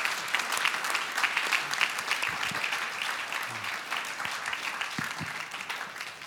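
An audience applauds in a steady, dense patter of many hands clapping, holding fairly even in loudness for about six seconds before easing slightly at the end.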